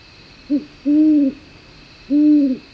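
A great horned owl hoots three times from a cottonwood tree right outside a tent at night: a short note, then two long, deep, resonant hoots, against a quiet night background with a faint steady hum.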